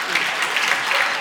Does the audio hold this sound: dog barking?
no